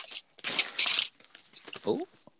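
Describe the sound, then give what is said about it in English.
Loud ripping open of a package of copy paper: a couple of long, harsh tearing bursts in quick succession, then quieter rustling and a brief vocal sound at the end. “Oh, he getting aggressive and ripping that paper.”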